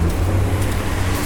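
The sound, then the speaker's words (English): A big truck rumbles past on the street, its deep engine drone loud, holding steady throughout the short stretch with no voices. “And going from, as a big truck passes by, so going from east to west along the street”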